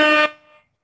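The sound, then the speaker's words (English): One short, loud air horn blast, a harsh brassy tone cut off after a quarter second, leaving a brief fading echo. No voices. “Hell yeah, shit, air horn for him too.”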